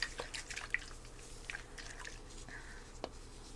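Soft drips and small wet squishes of micellar water for sensitive skin, used to clean a person's skin, scattered irregularly over a few seconds against a quiet background, with no one speaking.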